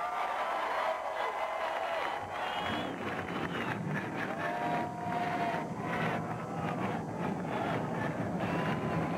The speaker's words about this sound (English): All right, engines fired, another episode of the F-Speed Podcast.